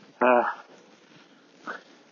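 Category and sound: animal, dog whimpering and barking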